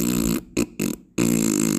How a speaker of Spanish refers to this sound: El gato come mucha sopa y la sopa tiene frijoles. Frijoles pinto. El gato se echa pedos.